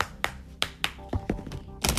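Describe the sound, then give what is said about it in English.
A deck of cards being shuffled: a few crisp taps and slaps at uneven intervals, ending in a quick, dense riffling flutter. No one speaks. “Shuffling the cards.”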